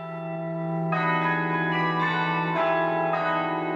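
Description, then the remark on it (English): The Carillon bells of Cobh, a town in East Cork, Ireland, ring out during a weekly recital in overlapping tones, new notes struck roughly every second and blending into a sustained, resonant wash, loud with no voices. “It's a town which has a sound associated with it, and the sound is the bells here, is the Carillon.”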